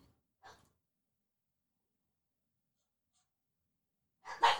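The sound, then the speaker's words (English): Dogs bark: one short, faint yelp early on, then quiet, then a louder bark bursting out right at the end. No one speaks. “My dogs are really mad about something.”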